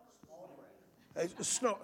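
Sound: voice imitating snoring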